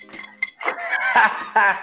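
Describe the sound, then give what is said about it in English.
A few quick, bright clinks like glasses tapped together in a toast, with someone talking over and between them. “So with that being said, I'm gonna do this little ghetto clink.”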